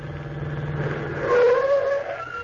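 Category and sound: vehicle, taxi car approaching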